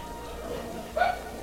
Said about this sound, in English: Quiet down. Bad dogs.